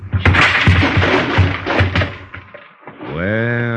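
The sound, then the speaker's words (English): A drawer full of blank keys is yanked open with a rapid series of knocking thuds and wooden rattles over about two seconds, then a voice cries out in a sustained raised tone. “Plume, keep away from that drawer!”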